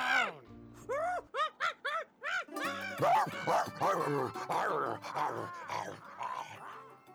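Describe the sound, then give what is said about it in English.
A dog, pointing at a dragon mascot, lets out a low growl and a quick run of sharp barks, followed by a noisy stretch of overlapping voices and commotion. “Your dog, he is pointing and growling at the dragon.”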